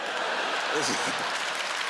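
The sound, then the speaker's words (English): Steady audience applause, a dense crackle of many hands clapping at an even level throughout, with a faint voice briefly rising beneath it midway. “It's called, oh, you're clapping, I'm dead serious.”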